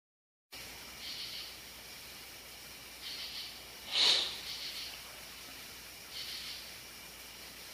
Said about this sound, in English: That was me sniffling, sorry.